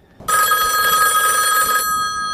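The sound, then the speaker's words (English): A telephone rings once in a loud, bright burst of trilling bell tones lasting over a second, then cuts off and fades briefly, like the ringing phone Neo answers from outside the Matrix. No voices. “Neo is called out of the world by answering the call of a ringing phone from outside the Matrix.”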